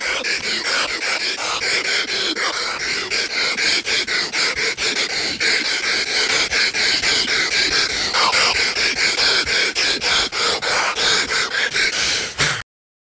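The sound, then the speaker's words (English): Loud, rapid gasping breaths from Hulk, one half of the Mega Powers, pushed right up against a microphone, a continuous ragged panting rhythm that never lets up for about twelve seconds, harsh with no speech. “You know what I'd love to hear is somebody to edit his like breathing sounds”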